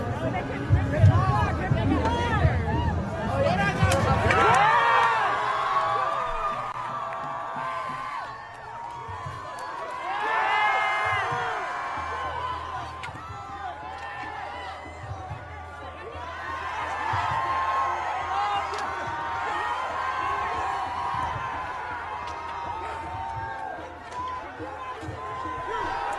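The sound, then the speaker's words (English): A large outdoor protest crowd shouts and chants in dense, overlapping waves, voices rising and falling continuously, with a low rumble underneath and no single voice standing out. “Did you hear in the background of that crowd, by the way?”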